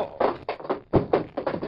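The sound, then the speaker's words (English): A rapid flurry of solid thumps, blows landing in a scuffle as a man is knocked unconscious, about eight hits in under two seconds with a couple of heavier impacts among them. “you didn't have to knock him out like that.”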